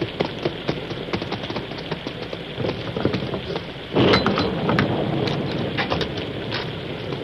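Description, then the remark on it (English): Steady rain hisses and patters with scattered sharp drops, then a deep roll of thunder swells up partway through and rumbles on beneath the downpour. No voices. “Horses plenty tired from fight against storm.”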